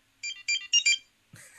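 A short electronic ringtone on a phone, Kim Possible's beeper tone: four quick bright beeping chirps in a rising pattern, followed by a brief burst of higher warbling tones, clear with no talking.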